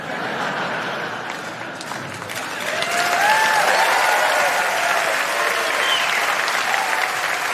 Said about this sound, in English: Not sure how to take that applause.